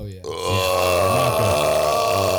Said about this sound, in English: Oh yeah. Oh man, that was a good one. I love how you shit on my farts, but you have like an a cappella orchestra of fucking burps going on 24/7.